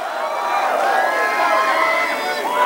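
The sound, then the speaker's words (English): A large crowd of Bernie Sanders supporters in Iowa chants the slogan "Feel the burn" in unison, many voices merging into a loud, continuous roar with rising and falling pitch, sustained throughout. “The crowd chanting, "Feel the burn," which has become the hashtag movement for the Bernie Sanders campaign.”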